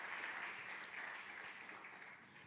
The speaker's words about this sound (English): Now give him praise for it because he is good. Give him a clap offering this morning because he was with you. Amen.